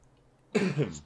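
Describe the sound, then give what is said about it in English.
A single sneeze bursts out of near silence, a sharp, breathy two-part blast lasting about half a second before fading away. “Bless you.”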